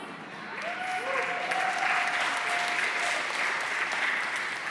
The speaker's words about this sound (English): Now, for all those of you who clapped, great, this is what we need. For all of you who clapped.